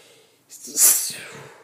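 sneeze

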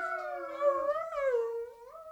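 dogs howling together

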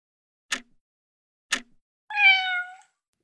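cat meowing

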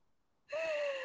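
person yawning

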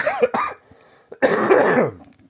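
coughing

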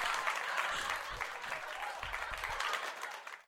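crowd applause

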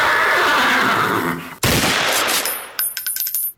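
horse neighing

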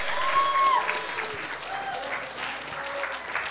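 audience applause

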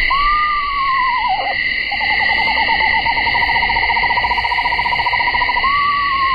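eastern screech owl call

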